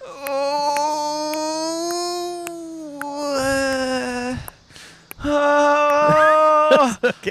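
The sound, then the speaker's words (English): A voice imitates a moaning wind as a sound effect for a story, with long, wavering hoots, one drawn-out howl, a short pause, then a second rising and falling wail, loud and alone. “The moaning of the wind would help cover the sound of their footsteps.”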